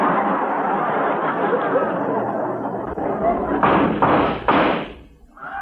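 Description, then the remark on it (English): Three loud, sharp gunshots ring out in quick succession outside an office, each a sudden bang against a steady background of murmuring voices and room noise. “Hey, those shots came from outside the office.”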